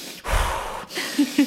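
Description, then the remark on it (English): A voice imitates forceful breathing-exercise breaths: a long, loud rushing exhale followed by a second, shorter breath that ends with a slight voiced grunt, clear with no talking. “He's got a brilliant breathing meditation. Well, it's a breathing exercise.”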